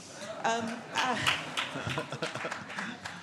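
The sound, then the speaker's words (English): Scattered clapping from about half of an audience in a tent at a talk, a patchy mix of sharp claps rather than full applause, with murmuring voices and a bit of talk mixed in at moderate volume. “half the audience clapped.”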